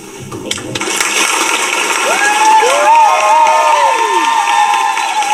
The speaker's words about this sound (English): A whole lot of cheering going on from coast to coast with parents and loved ones so excited about the accomplishments of these little babies that have grown up into young men and women.